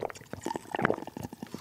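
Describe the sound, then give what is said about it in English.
Someone drinks Chappy's Deli brand bottled spring water in a quick run of soft gulps and wet swallowing sounds, about eight in under two seconds, with no talking. “Just drinking our Chappy's Deli brand bottled water.”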